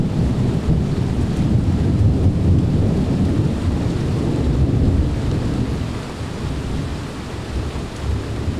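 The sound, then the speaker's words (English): Loud storm wind roars over crashing surf in a dense, continuous low rumble that eases slightly near the end. No voices are heard. “This storm is for you, Mira.”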